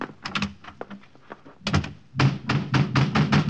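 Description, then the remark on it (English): Heavy, insistent pounding on a door: a quick flurry of thuds, a brief pause, then a louder, steady barrage of blows, with no voices. “Open up in there.”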